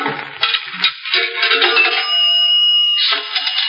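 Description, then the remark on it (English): A pay-phone call sound effect in a phone booth as a call is placed to police headquarters: a metallic rattle of coins and clicks, then a steady tonal ring or hum holding for about a second before the clatter briefly returns. No one speaks. “I'll make the call, sir.”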